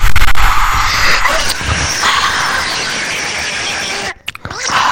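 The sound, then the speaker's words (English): A loud, breathy ASMR-style whisper-scream, raspy and squealing, held for about four seconds before cutting off abruptly, followed by a short burst of noisy rustle. “Let's actually do an episode where it's just ASMR for 10 hours and then just break it with ASMR screaming.”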